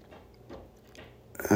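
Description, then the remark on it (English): A cat digging and scratching at the small wooden bench that holds its food: a few faint, dry rasping strokes, then a sudden louder burst of scratching at the end, with no one talking. “that's my cat digging at the little bench that holds her food.”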